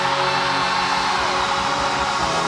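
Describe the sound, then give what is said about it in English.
An audience screaming together for Jesus in worship, a loud, dense wall of many voices that roars on steadily without a break, with no single voice or words standing out. “We will give it all for Jesus. Scream!”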